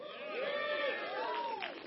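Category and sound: crowd, audience cheering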